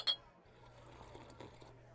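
beer glasses clinking

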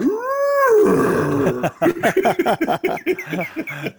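dog growling and yipping

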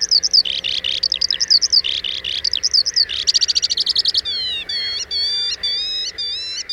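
skylark song

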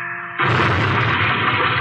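plane crashing into hills

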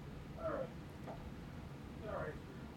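cat

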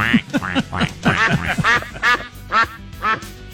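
duck quacking sound effect

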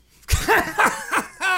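sneeze

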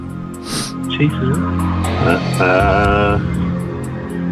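car driving

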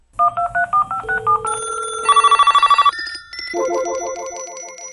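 telephone ringing

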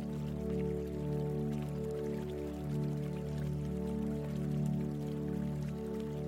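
water fountain trickling

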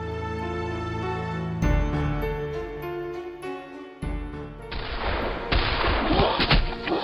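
gunshots

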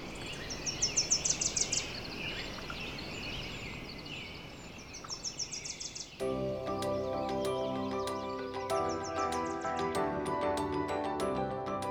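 bird song

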